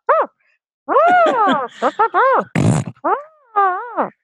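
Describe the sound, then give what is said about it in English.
A voice makes a string of silly vocal fart noises, short rising and falling bursts with one raspy, noisy blurt in the middle, loud with brief pauses between. “I think it'd be funny if guys could sync their farts.”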